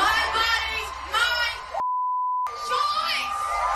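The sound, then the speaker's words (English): A large concert crowd, with middle fingers stuck up in the air, loudly shouts a chant in unison. Partway through, a steady high-pitched censor bleep cuts in and holds for about half a second, then the crowd's shouting carries on. “But they're then getting the crowd to stick their middle fingers up in the air and shout it.”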